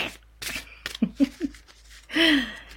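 Quick rustles and papery snaps of a deck of cards being shuffled in short bursts before a card is chosen, mixed with a few soft breathy vocal sounds and ending in a longer airy exhale.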